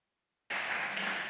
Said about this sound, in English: So give them a show. Give them a show. Yeah, come on, give a clap. Yeah.